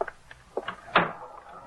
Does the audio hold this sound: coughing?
no